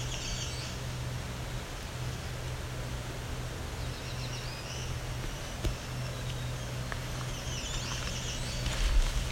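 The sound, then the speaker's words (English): A black-throated green warbler sings an odd variant of its song, three short buzzy high-pitched phrases spaced apart, faint over a steady hiss and low hum. “I would say that's a black-throated green warbler making up a new song.”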